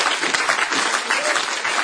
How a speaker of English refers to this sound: On, give God a clap. Oh, laten we een applaus geven.